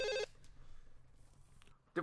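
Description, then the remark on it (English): A telephone ring tone sounds on an outgoing call to a cell phone with an Orange County area code, 949: one steady electronic burst at the start and another beginning near the end, with low line hiss in between. “Okay, it's ringing.”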